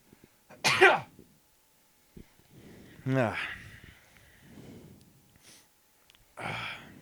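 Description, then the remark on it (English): A sharp, loud sneeze bursts out near the start as a person farts and sneezes at once, followed by scattered softer vocal noises and breathy sounds with quiet gaps between them. “I farted and sneezed at once.”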